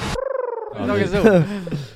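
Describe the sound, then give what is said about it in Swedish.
A person imitates a cat, starting with a short steady, pulsing hum and then sliding into a wavering meow-like whine that bends up and down in pitch. “Katt. Nej, homo sapien tror jag.”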